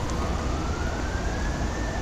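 fire engine siren approaching

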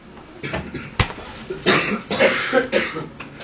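coughing

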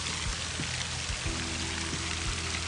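water splashing

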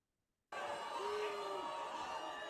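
crowd booing

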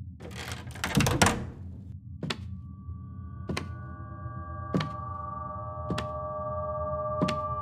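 door being opened

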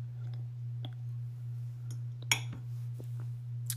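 wine glass clinking

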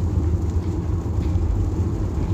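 rain

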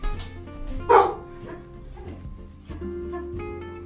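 dog barking

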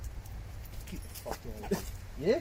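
dog whimpering

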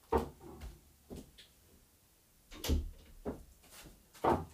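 door being shut

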